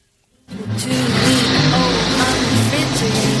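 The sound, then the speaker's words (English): After a brief moment of quiet, a loud, dense roar of several dirt track race cars bursts in, their engines snarling and droning continuously until the end. “Next one's a race. Body hitting snow. Yikes. Dirt track racing.”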